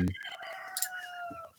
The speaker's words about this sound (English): Who's got the chicken? Who's got a rooster in their house? Is that your place? Is that us? What's going on in Australia out there?